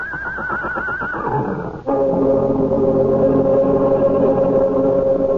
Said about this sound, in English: And Mr. Oakes looks from the small man, writhing in pain, to the huge horse, his ears flat against his skull, his eyes rolling wildly at the farmer.